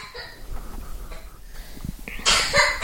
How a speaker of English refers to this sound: Poor thing, she's coughing.